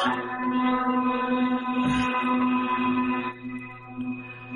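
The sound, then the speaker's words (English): A bagpipe's bag being inflated by a player on St. Patrick's Day, its drones sounding a steady, reedy hum of stacked tones, with a brief breathy swell midway and a slight drop in level near the end. “He's inflating his bag.”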